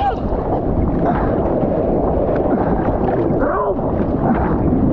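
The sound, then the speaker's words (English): Rough ocean water off the Jersey shore churns and splashes while wind buffets the microphone, making a loud, continuous roar with no clear breaks between waves. “You can see how rough the waves are.”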